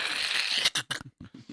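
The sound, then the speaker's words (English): An apple bite sound effect: a dense, crackly crunch lasting over half a second, then several short, sharp crunching bursts separated by brief silences, with no talking. “The sound effect that doesn't actually sound like somebody biting an apple.”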